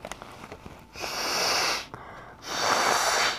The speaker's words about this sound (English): …'s blowing her nose because she's sick.